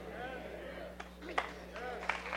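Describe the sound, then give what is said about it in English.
A few scattered hand claps from an audience during a sermon, sharp but fairly quiet, popping out irregularly over a steady hum and indistinct voices. “Hey, I'm not preaching for hand claps. They're getting quieter every round.”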